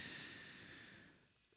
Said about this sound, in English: I'm breathing heavily into the mic and it's gross.